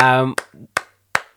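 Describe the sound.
A brief stretch of voice gives way to three loud, sharp hand claps, evenly spaced and slow, like a short burst of applause for the women's first team.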